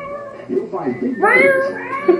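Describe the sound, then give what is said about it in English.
A cat meows loudly, a couple of short calls rising into one long, drawn-out, wavering meow that fades near the end, like the sound in a cat litter commercial. “Is that the Tidy Cat commercial sound?”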